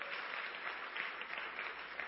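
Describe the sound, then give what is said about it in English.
A crowd claps hands for the Lord in the morning, a dense, steady wash of applause, many overlapping claps blending into a continuous crackling roar at an even loudness throughout. “Can you give the Lord a big hand clap this morning?”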